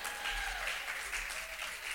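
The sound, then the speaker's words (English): A crowd claps steadily, a dense, even wash of many hands with no pauses, moderately loud and without voices over it. “Y'all should have clapped on that.”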